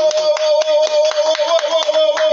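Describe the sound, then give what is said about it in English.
A short burst of applause: steady, fairly loud hand claps in a quick, even rhythm, about four per second, over a constant humming tone, with no voices. “I got to get a round of applause for that.”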